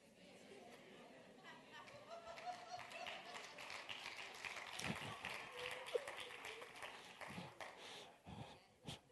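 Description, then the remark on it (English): An audience applauding, dense overlapping clapping mixed with murmured chatter and a few raised voices, holding steady and swelling slightly midway before thinning into scattered claps at the end. “They're applauding.”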